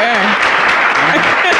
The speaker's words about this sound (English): Oh, you got claps. Okay.